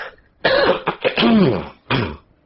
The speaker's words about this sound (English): Excuse me, I got a little frog in my throat.